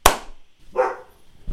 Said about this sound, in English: Dog now barking.